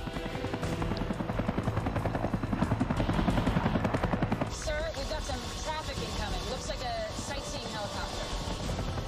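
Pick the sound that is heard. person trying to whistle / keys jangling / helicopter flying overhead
helicopter flying overhead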